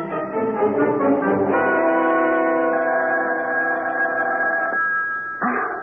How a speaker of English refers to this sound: The phone. Oh, my gosh, it's 3 a.m. Answer it, Maynard.